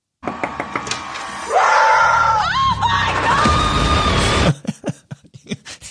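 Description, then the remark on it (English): Vicky Gunvalson screams loudly and at length in a clip from a TV season trailer, her shrill cries rising and wavering, while sharp knocks pound on Tamra's door before and after the screaming. “But the trailer ends with Vicky screaming, knocking on the door to Tamra.”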